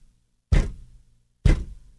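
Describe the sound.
Two loud, sharp bangs about a second apart, each with a quick decay, made as a vocal imitation of construction work drilling and banging into a building's parking lot. No talking.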